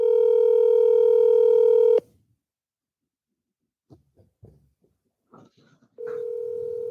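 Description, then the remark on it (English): A FaceTime video call ringing tone from a phone sounds clear, a steady electronic tone lasting about two seconds, then a pause with a few faint clicks before the ring starts again. “Let's just call him. I FaceTimed him.”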